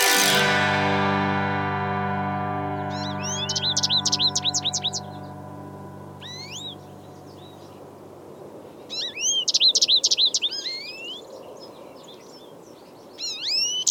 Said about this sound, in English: Each year, American goldfinches are one of the last songbirds to breed in North America. These sweet little songsters obtain all of their needed protein almost exclusively from seed.